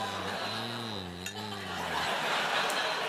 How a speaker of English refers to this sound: Cheers. Here's to the winners.